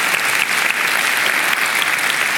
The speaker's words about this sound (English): Yes, let's give the Lord another round of applause. I heard that there.